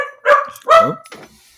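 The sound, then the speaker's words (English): Hazel, a pet dog wearing little jingle bells for Christmas, barks twice in quick succession, loud, mid-pitched, harmonically rich woofs, followed by a brief softer, scratchy trailing sound. No one speaks. “Hazel says Merry Christmas to all.”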